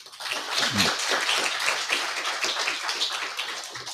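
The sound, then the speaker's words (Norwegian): A crowd applauds steadily for a few seconds, a dense, even patter of many hands clapping at once with no voices standing out. “Det fortjener en ny applaus, gjør det ikke det?”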